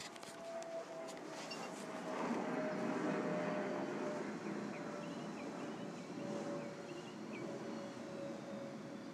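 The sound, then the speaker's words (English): An airplane passes overhead as a steady, broad roar that swells slightly midway and eases off, carrying a faint sustained hum tone, with no talking. “First, let's hear the airplane.”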